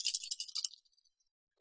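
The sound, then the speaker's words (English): Dice clatter and tumble in a quick, bright rattle of several rapid clicks, slowing into a few faint taps as they settle on a roll of 12 for a perception check, followed by a short pause before a loud sound begins. “12 is on the dice.”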